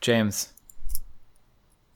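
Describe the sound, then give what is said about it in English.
A voice says a short word, followed by a few sharp metallic clicks from a switchblade knife, spaced apart and fairly quiet; someone is clicking the knife while talking. “You're clicking the whole time you're talking. No, I have to keep my pens off of my desk too. Is it a pen? Is that what I'm hearing? No, it's a knife, same difference.”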